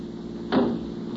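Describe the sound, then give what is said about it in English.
A car door opens with a single sharp clunk midway through as a man is thrown out of the moving car, heard over a steady low rumble like the running engine; no voices. “Open the door”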